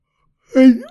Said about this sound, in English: Sorry about my yawning, folks. Can't help it.